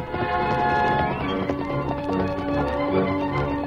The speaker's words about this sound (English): Before Tonto and Dan could signal their horses to move, the Lone Ranger had urged Silver forward. The great white stallion seemed to leap into a fast gallop, and in a moment was closing the gap between the Lone Ranger and the little boy